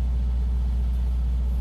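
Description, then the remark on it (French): A rented motor engine runs steadily, a loud, deep, continuous rumble with a low throbbing hum that holds even throughout, with no voices. “Une partie de l'argent que vous avez mis dans la retraite, c'était pour louer un moteur. Qui fait du bruit.”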